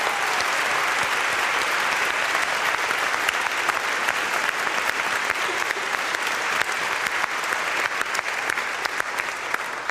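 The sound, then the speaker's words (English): Sustained applause from a large audience thanking donor individuals and organizations, a dense steady wash of clapping that holds at an even, fairly loud level for about ten seconds with no voices rising above it. “Would you please give them a big round of applause?”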